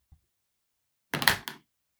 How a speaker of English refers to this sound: And so let's roll the dice and see who goes first